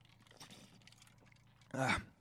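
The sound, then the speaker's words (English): A single short, loud slurping sip of a C4 energy drink, lasting about a quarter second, follows a stretch of quiet low background noise. “I'm going to take a sip of my C4 energy drink.”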